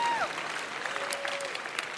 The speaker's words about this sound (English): That is a stupid thing to clap for.